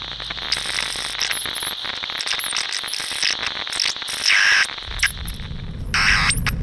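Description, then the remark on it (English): Harsh radio static from a lost signal hisses and crackles throughout, with warbling electronic whistles drifting across the top and bursts of louder rushing noise near the end. No one speaks. “Sorry, didn't get that. Must be Storm losing signal.”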